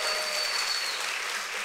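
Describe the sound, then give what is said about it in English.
Steady, dense applause from a church audience for the church's parking team, a broad hiss of many hands clapping at constant loudness with no pauses or speech on top. “Come on, round of applause for our parking team right there.”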